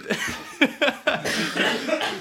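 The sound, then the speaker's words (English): A burst of several sharp coughs in quick succession after inhaling green tea, harsh and throaty, followed by ragged breathing and a lingering rasp, with no speech. “I'm trying not to cough into the fucking thing. I inhaled this green tea.”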